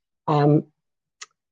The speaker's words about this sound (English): Hey, there's the cough.